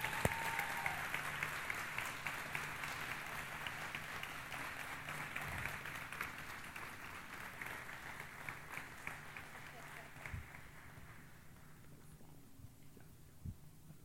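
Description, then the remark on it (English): An audience applauds steadily for about twelve seconds to welcome a school principal and his wife, a dense wash of many hands clapping that gradually thins and fades toward the end, with scattered louder claps. “And let's give him a late point applause.”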